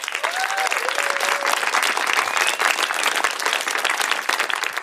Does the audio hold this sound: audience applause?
yes